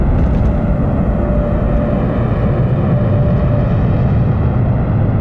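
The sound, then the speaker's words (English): A rocket carrying an Orion capsule launches from Florida, its solid rocket boosters roaring: a loud, steady, rumbling thunder heavy in the low end that fills the whole stretch without letting up. No voices are heard. “And then they turn on those big solid rocket boosters.”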